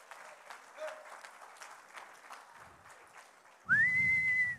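A church audience claps hands in praise to God in a steady, dense patter of applause, then a loud, sustained whistle slides upward and holds its pitch over swelling crowd noise to the end.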